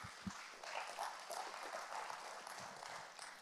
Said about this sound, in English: Somebody clap your hands to God this morning.